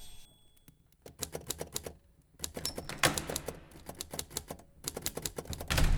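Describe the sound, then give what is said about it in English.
Rapid mechanical clacks of typewriter keys struck in quick bursts late at night, separated by brief pauses, fairly loud, with a heavier thunk near the end like a carriage return. “As the night waned on, I sought solace through the keys of my typewriter.”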